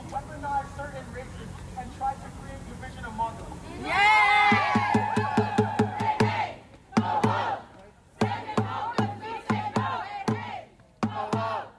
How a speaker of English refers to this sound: So if you pass by Harvard on Saturday afternoon, July 1st, you'd see a crowd of students chanting in unison and booing the Supreme Court of the United States.